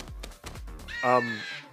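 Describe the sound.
A person lets out a loud, harsh caw in imitation of a crow, a single raspy squawk held for about a second after some brief low vocal sounds.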